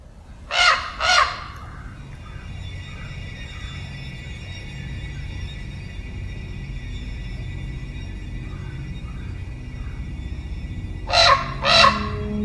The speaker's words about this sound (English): The common raven is a massive, cunning, all-black corvid with a huge bill and a shaggy neck. It can make as many as 33 different types of sounds, including some calls that can be heard over a mile away.